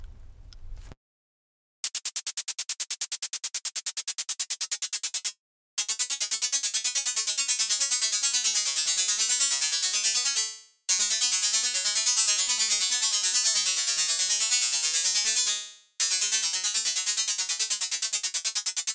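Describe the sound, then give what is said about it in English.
A quick run of bright, synthetic plucked-string notes with a buzzy, metallic edge, made by playing short bursts of white noise into a comb filter at high feedback settings, plays in several steady phrases separated by brief gaps, fairly loud, with no voices. “If we play a short burst of white noise into a comb filter at high feedback settings, we can imitate the sound of a plucked string.”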